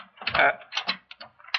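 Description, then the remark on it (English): A warped old door being lifted and forced open, with a run of scraping, rattling clunks and brief creaks in uneven bursts, fairly loud with short pauses between. “Oh, this old door, it's so warped. Here, let me.”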